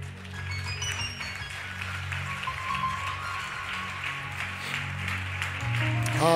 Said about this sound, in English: That's just a hand clap. There should be some excitement in this room.